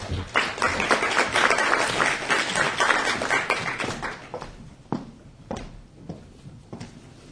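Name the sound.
audience round of applause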